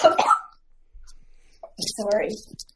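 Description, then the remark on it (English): Someone coughs and sputters after swallowing tea the wrong way: a rough, voiced burst, a short pause, then a second strained, throaty round of coughing, fairly loud. “Yeah, you swallowed the tea wrong. I noticed you when you sipped it.”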